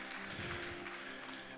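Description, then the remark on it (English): An audience claps for themselves in a steady, dense wash of applause that holds an even loudness throughout, with a sustained low tone humming underneath. “Clap for you because you're willing to do the same thing.”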